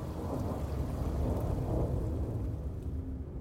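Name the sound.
rain and thunder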